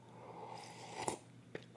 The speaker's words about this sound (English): I'm gonna take a sip of Koofies right here.